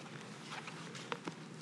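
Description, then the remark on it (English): Light rain hisses in a soft, steady wash, broken by a few scattered taps and patters of drops. It stays faint throughout, and no one speaks. “I was just going to give you a chance to listen to the rain, get it out of your system, but now it's diminishing.”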